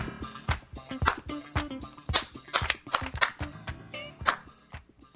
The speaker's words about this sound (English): Oh, sorry. I was clapping my hands. I didn't hear that the music was ending.